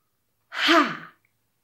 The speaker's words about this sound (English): And then when we chop the wood, make a chopping sound. Ha! And when you do that, you're breathing all your air out really fast. Ha!